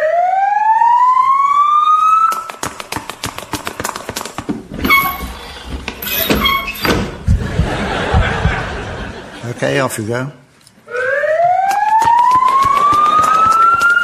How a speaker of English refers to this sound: Right, here we are at the hospital. Never mind that siren.